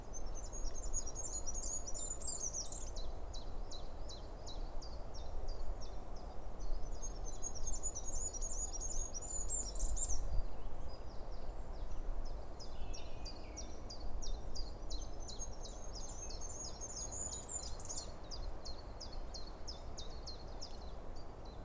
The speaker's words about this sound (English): Oh, and a willow warbler's just shown up.